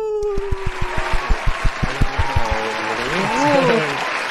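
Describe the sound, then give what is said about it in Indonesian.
A run of about a dozen sharp hand claps in a steady, even rhythm, fairly loud, fading out after a couple of seconds into voices and background sound. “Aku tak boleh tepuk lama-lama lah nanti.”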